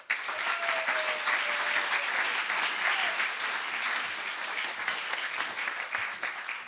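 A crowd applauds steadily, a dense wash of clapping that stays loud and even for several seconds with no voices on top.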